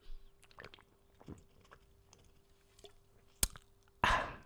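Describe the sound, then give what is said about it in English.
Quiet wet gulping as someone takes a sip of a drink, several soft swallows spaced out, then a sharp click and a louder breathy rush at the end. “That was more of a chug.”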